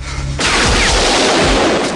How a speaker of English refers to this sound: The explosion rocks the cave. A soldier startles Rambo, then gets shot.